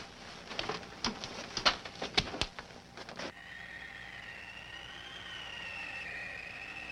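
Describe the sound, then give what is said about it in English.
A burst of sharp metallic clanks and rattles, then a steady high-pitched metal squeal that holds to the end as a heavy jail door grinds shut. No voices. “It's just the sound of a jail door closing, Mr.”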